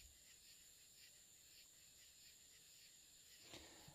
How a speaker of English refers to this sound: The crickets and the frogs and all the things that are making noise, it's not noise, it's worship music to the Lord.